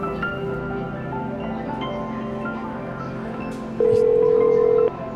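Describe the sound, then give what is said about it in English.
A telephone keypad dialing tone rings out as one steady electronic beep lasting about a second, loud, over a dense, humming background of layered sound. “I seem to remember the phone number by a form of muscle memory.”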